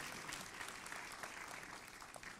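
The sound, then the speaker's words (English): A church audience breaks into steady applause, giving God a hand of praise during a sermon about Christmas: a dense patter of many hands clapping at an even level throughout, with no voices standing out. “And so I think we ought to just give God a hand praise for that.”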